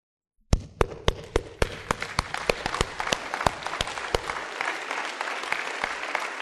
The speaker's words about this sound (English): All right, you can sit down. Listen. That is applause for the grace of God in Jesus Christ that kept a faithful people who went through difficult times so now that you and I can be a part of what God is doing here now.